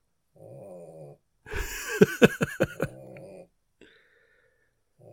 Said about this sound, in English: Can you hear Teddy snoring?